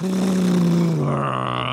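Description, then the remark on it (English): A big truck drives by very fast: a loud, steady engine roar with a deep humming tone that drops in pitch about halfway through. “Then she heard a loud noise like a car or a truck driving really, really fast.”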